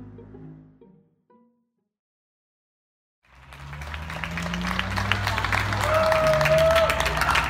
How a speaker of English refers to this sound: In the spring, people started applauding hospital workers and ambulance drivers at 7 o'clock every night. You know, you open your window, bang on pots, play a trumpet, something like that.